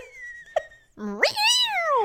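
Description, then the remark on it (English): A person's voice imitates a small dog's yappy bark, like a Chihuahua: a short low note, then one drawn-out cry that swoops sharply upward and slowly falls, loud. “No, that sounds like sounds a dog like barking. Chihuahuas.”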